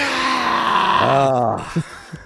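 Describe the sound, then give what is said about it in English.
A crowd-cheering sound effect that comes out as a single loud, droning roar, its pitch sliding down like a monster's groan, followed by two short soft thumps. “And the crowd goes wild.”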